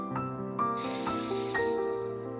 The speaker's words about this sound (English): Did you just sniff my hair? It smells like a summer's day.